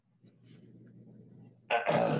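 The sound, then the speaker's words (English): A person clears their throat: a low, rumbling hum that builds for over a second, then breaks into a short, harsh, raspy burst. “I'm clearing my throat.”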